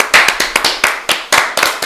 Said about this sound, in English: Again, let's clap it up for Dom.